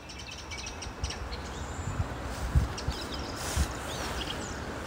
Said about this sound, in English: Well, it's lovely bird song, and I'd like to tell you that it's a beautiful spring morning, but in fact I'm at Stansted Park in almost thick fog, and I can't believe that there's still some bird song, which is lovely. It is quite early.